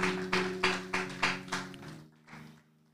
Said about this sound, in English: Come on, put your hands together one more time for God, for the Spirit.